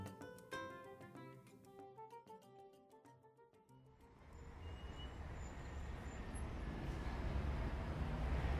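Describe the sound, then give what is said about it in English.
A short melodic music phrase gives way to the steady, rumbling interior of a city bus carrying office workers downtown, with low engine drone and traffic hiss, growing slightly louder toward the end with no talking. “But unlike most bus rides, today we get a glimpse into the inner thoughts of several office workers as they make their way downtown.”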